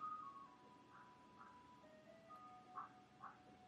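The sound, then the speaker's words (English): An ice cream truck passes, its tinny jingle playing a simple tonal melody with chiming notes drifting over low street rumble, fairly quiet. “I'm gonna let the ice cream truck pass.”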